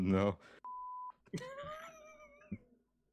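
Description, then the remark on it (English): A single steady, high-pitched automatic censor bleep lasting about half a second cuts in right after a burst of speech, followed by a drawn-out vocal sound from a voice. “I love the auto beeps. The auto beep is the way to go.”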